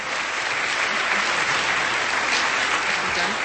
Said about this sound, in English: So give yourselves a round of applause for that.